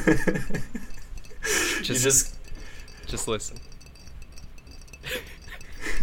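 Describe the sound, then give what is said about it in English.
Goose Island IPA beer fizzing in a glass: a bright, hissing crackle swells for about half a second, then fainter fizzy bursts follow, with a man talking before and between them. “The Goose Island IPA. It's in a glass right now, but you hear that?”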